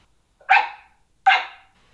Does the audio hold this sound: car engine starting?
no